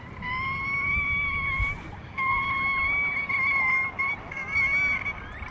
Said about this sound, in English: In the marine environment, sound is essential for survival. Killer whales use echolocation for navigating, communicating, and finding food. The range of sounds is vast, from grunts and snorts to discreet squeaks